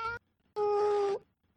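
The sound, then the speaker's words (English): An old cat meows twice: a short cry that cuts off, then after a pause a longer, drawn-out, steady meow. No other sounds are present. “On the table in front of you, you will see an old cat and a syringe.”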